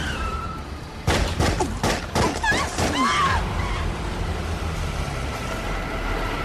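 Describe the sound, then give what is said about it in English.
A rapid burst of loud, sharp gunshots, roughly eight cracks in two seconds, fired from a car pulled up alongside another in traffic in Las Vegas in September 1996, erupts over steady street traffic, followed by a brief high squeal and a lingering low engine rumble. “Tupac Shakur is hit five times, and Suge Knight is winged.”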